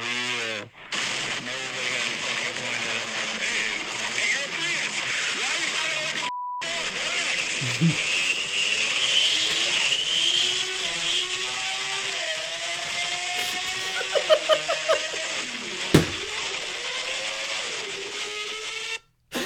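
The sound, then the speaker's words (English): A Mustang car engine revs steadily, its pitch climbing and then dropping back as it shifts gears a couple of times, loud and continuous over a rough, noisy background. “It's like so evidently a car too. Like, you can hear it shifting gears.”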